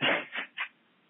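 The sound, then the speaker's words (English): A sneeze: one strong, breathy burst followed by two shorter, quieter bursts in quick succession, then silence. No one speaks. “I'm sorry, I sneezed.”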